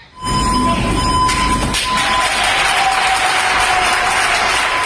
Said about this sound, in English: At a hospital in Barcelona, Spain, doctors and nurses surprised a cleaning crew with a warm round of applause.